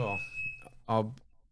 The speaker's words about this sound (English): Is everything all right? Oh, no, what's happening? The fire alarm was going off. God. It's all right, it's bacon. Oh, okay, all right. Always sets the fire alarm off.